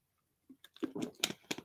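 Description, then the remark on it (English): A sip of water: a quick series of wet slurping and swallowing mouth sounds, brief and fairly quiet, with no talking. “A little bit of water.”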